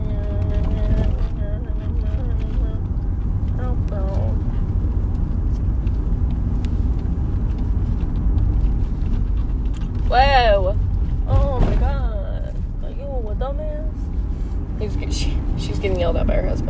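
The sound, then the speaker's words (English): A car drives along with a steady engine and road rumble filling the whole stretch, while voices break in now and then, rising sharply near the middle. “If you want to drive the car, drive it right.”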